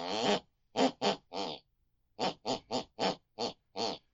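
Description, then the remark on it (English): A woman asleep snores out a melody, heard from the room next door through the bedroom wall, in short, pitched, nasal bursts: a group of four notes, a pause, then six more in steady rhythm, fairly loud with no talking. “Whatever my mother listens to before she goes to bed picks and pulls on her unconscious mind, and it's the very tune that she snores. Let's have a listen tonight.”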